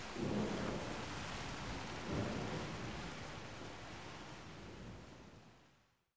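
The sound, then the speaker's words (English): A heavy thunderstorm with steady, dense rainfall and deep rolling thunder rumbling loudly twice, before the downpour fades out at the end. “The thunder roared like a lion in the winter breeze.”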